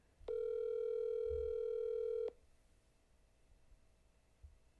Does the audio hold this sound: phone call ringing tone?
yes